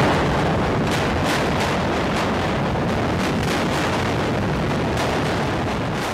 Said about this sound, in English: It sounded like a New York City subway train. Others said they thought it was thunder or someone hammering, and in a way it was. It was Katrina hammering away at the roof trying to get in.